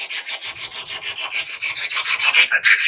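A chair is dragged across the floor, giving a steady, rapidly juddering rasp that grows slightly louder toward the end, with a brief break just before it finishes. No one speaks.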